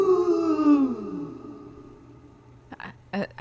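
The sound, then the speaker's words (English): A voice imitates a ghost's moan, a long wavering 'ooh' that slides downward in pitch and fades out, followed by a couple of short spoken bursts. “Ooh, I'm a ghost in the library.”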